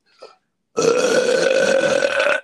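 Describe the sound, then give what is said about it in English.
A short faint sound, a brief pause, then a loud, sustained burp that rumbles steadily for well over a second before cutting off, prominent with no talking. “I was wondering whether that was going to turn into a burp or not.”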